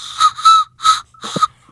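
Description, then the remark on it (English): A toy train whistle from Wenzhou, China is blown in four short, breathy toots, the last one wavering a little. It is fairly loud, with no one talking. “You're really great at blowing that train whistle.”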